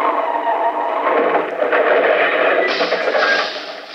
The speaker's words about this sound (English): No, I meant them cars that banged into each other.